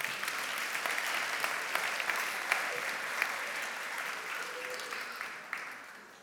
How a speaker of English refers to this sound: Everybody else, thank you. Let's give him a little ripple of applause.